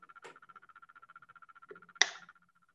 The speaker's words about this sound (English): It's like, oh, it stopped. Okay, I'm sorry. It was like this rattle and I didn't know what was going on.